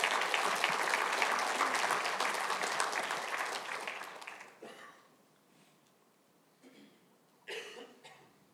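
A church audience claps in a dense, sustained burst for about four seconds, then the applause fades out, leaving quiet with a few scattered coughs.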